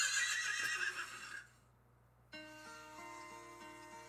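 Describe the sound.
A voice mimics a horse's whinny: a loud, shrill, wavering neigh lasting about a second and a half, followed after a brief pause by a steady, buzzing tonal drone.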